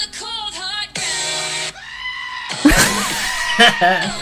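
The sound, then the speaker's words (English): A person's voice imitates a screaming goat, letting out several strained, bleating cries with wavering pitch, loud, followed by a harsher, shrieking burst at the end. “it's basically a goat singing the chorus to …”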